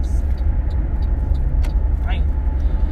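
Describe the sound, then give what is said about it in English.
A large truck rumbles past on the street, its deep engine drone loud throughout, with a sharp click and a brief rising brake squeal near the end. “And there's a huge truck, and I'm kind of scared because trucks are scary in the streets.”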